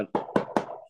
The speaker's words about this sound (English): Knock on wood.